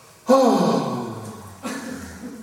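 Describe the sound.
A voice imitates a sharp, sudden shocked gasp, a loud breathy intake that trails off, followed by a second, softer breathy vocal sound about a second later.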